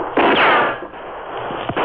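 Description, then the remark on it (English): Several muffled gunshots, fired from a hall, crack at irregular intervals over a dense, rumbling wash of noise, loud throughout with no voices. “Those shots are too close.”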